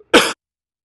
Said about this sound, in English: Every day. Excuse me, I got to cough again.